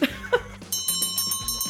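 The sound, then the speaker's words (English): A brief chuckle gives way to a loud closing bell ringing rapidly and continuously, its bright, sustained metallic clang pulsing in quick repeated strikes to the end. “Oh, ladies and gentlemen, there's the closing bell.”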